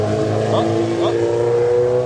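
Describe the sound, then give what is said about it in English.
A sport motorcycle, a Gixxer with an extended swing arm, revs its engine, a loud, steady buzzing drone that holds throughout, with faint voices in the background. “It's a Gixxer. That was a Gixxer with an extended swing arm, I think, there.”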